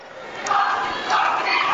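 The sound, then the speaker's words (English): A crowd at a high school basketball game at South Dearborn High School roars and cheers in the fourth quarter, a steady broad wash of voices swelling louder twice, with no single voice standing out. “Good crowd assembling here at South Dearborn High School.”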